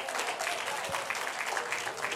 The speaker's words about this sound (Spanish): Den un aplauso fuerte si entienden lo que estoy diciendo.